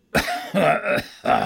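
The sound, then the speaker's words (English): Three harsh coughs from a man in quick succession, a bit muffled into his fist, with a short gap before the last one and no talking. “coughed into his fist and made a face.”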